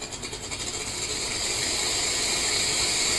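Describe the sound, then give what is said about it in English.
A snake sound effect plays from a Google smart speaker after it is asked for a snake sound: a loud, harsh rattling buzz that swells within the first second into a steady, raspy hiss lasting about three seconds, with no talking. “Do you want to hear a snake sound? Yes. Alright, this is a snake.”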